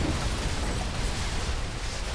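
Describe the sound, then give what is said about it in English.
A loud, continuous roaring blast with deep rumbling and crackling noise that holds steady for about two seconds, as a rocket-powered test airplane, launched from a makeshift runway at the Arroyo, rips itself apart in a fiery explosion after its fuel is ignited. No voices are heard. “the vehicle ripped itself apart in a fiery explosion.”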